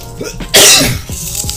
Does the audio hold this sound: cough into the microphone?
yes